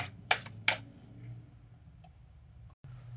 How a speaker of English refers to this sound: Let's see. I haven't pulled a wisdom card in a while. I've been pulling my words that work. But today, we got the wisdom cards. So let's shuffle these and see what we get.